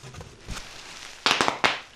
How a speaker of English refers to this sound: Easy. The boys are getting nervous. Sorry. They hate fireworks, you know.